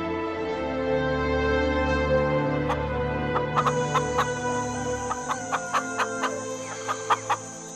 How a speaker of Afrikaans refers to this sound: Die hoender. Hy weet nie dat hy gaan sterf nie.